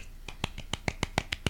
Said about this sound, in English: We applauded quietly because we didn't want to break your ears.